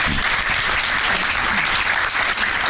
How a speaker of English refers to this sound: That is one long walk. They have to keep the applause going a long time while you guys are walking down there. We like that.